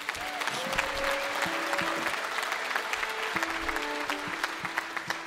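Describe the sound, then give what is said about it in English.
A Mountain Stage audience claps steadily and loudly for several seconds for a band, whose members say it is the last day of their American tour. A dense wash of overlapping hand claps carries faint whistles or cheers over it, with no speech breaking through. “People always clap the loudest when we say we're going home.”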